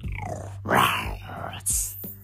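A rough, growling roar swells up and fades as a curtain is pulled back in a shop, followed by a shorter, sharp airy hiss, with a low steady hum underneath throughout.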